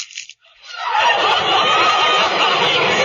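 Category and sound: animal, chicken clucking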